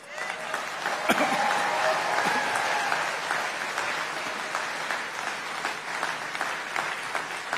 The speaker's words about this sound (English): Reagan still gets a lot of applause here at CPAC.